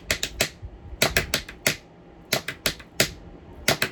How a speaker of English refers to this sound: I like to play drums. I can pick up these two pens.